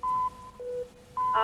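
A 30-second game timer starts with electronic beeps: a steady high tone, a shorter lower tone, then the high tone returning and swelling into a brighter, buzzier sound. No one talks.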